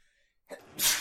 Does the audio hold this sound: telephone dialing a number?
no